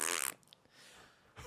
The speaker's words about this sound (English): That's a lot of fart noises for one set. I'm really milking that fart noise.